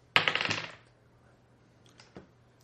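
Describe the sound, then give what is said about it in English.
Dice clatter across a hard tabletop in a quick, bright burst of rattling clicks lasting about half a second, followed by a couple of soft taps as they settle, over a faint steady hum. “Stealing your dice.”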